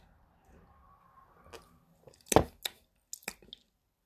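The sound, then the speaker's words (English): Someone takes a sip of Sainsbury's Taste the Difference American Style IPA beer (5% alcohol) from a glass: a quiet pause, then a few short, wet slurping and swallowing sounds in quick succession, with no talking. “I'm gonna go in for a sip and I'll let you know what I think.”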